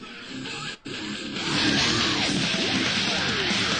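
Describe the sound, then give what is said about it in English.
A loud, chaotic song from a playlist of a band's songs plays in the background while a group of women eat; its dense, distorted sound cuts out briefly, then surges louder into a frenzied stretch of screaming voices over the noise. “It's like the end when they start really screaming, huh?”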